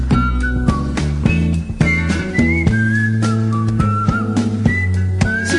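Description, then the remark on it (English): A slightly off-key whistled melody wanders over an upbeat musical backing with steady low chords and light percussive beats, the whistling clear and prominent throughout, with no one talking. “No, the whistling's a little bit out of tune.”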